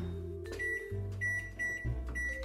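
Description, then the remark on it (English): A kitchen timer, set for 15 minutes while tempeh steams in a saucepan, going off with a series of short, high-pitched electronic beeps in an uneven rhythm, over a steady low hum, with no one talking. “My timer has just rung, which means my tempeh is ready to be infused with flavor.”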